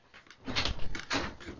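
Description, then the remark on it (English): A door being opened, with a scraping, rattling rush of noise that swells and fades in a couple of bursts over about a second and a half, with no voices. “He opened the door.”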